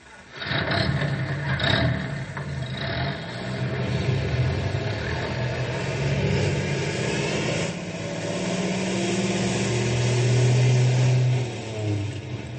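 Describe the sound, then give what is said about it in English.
A rescue truck engine rumbles, revving up and climbing in pitch as it pulls away, with a steady low drone building toward the end and no voices. “you fellas drive the other rescue truck.”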